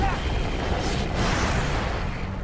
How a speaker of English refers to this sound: Now, Christopher didn't know that explosion was going to be that big.